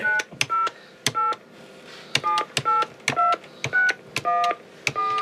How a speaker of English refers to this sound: Please enter the phone number you wish to call.